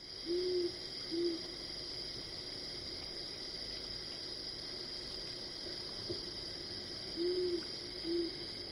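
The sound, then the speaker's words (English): A rufous owl gives low, paired hoots, two double-note calls spaced several seconds apart, over a constant high-pitched insect drone. Recorded by Mark Anderson. “If you are really lucky, you might hear one late at night or very early in the morning.”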